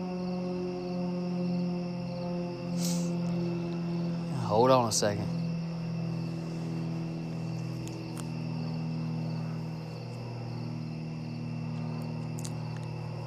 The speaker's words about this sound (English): And there's an airplane flying over, if you can hear it.